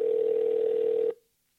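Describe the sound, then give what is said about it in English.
A telephone ringback tone on an outgoing call sounds once as a steady, fairly loud electronic hum for about a second, then cuts off abruptly into silence. No one speaks. “Let's do a call and just see if I can get somebody to answer the damn phone.”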